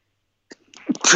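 A single sharp sneeze after a brief silence, with a quick inhaled buildup bursting into a loud, breathy explosive release, with no talking.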